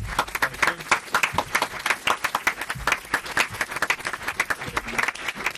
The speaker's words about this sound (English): Can you clap?